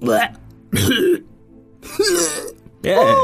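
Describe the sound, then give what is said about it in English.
A creature, the Phoenix Taco, hacks and gags up a hairball in four loud, throaty bursts separated by brief pauses, voiced and retching; a little golden globe falls out of its mouth. It sounds like a person's voice imitating the coughing. “Can't you see the poor things coughing up a hairball?”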